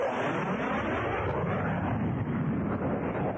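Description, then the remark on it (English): A loud, steady roar of an airplane engine fills the whole stretch, a dense rushing noise that holds constant without pause, with no voices. “Stop! Airplane, drive me to America.”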